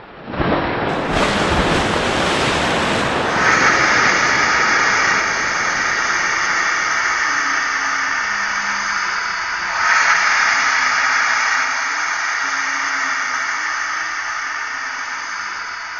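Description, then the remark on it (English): A geyser of white water suddenly erupts up and outwards from a well in a loud burst of rushing water, settling into a steady, powerful hiss like venting steam, surging again briefly midway before easing slightly toward the end. “and suddenly a geyser of white water erupted up and outwards, engulfing both the djinn in its embrace.”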